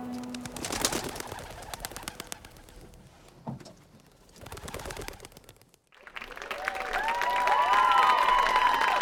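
Bursts of wings flapping, followed by a steady chorus of birds cooing and calling that grows fuller and louder toward the end.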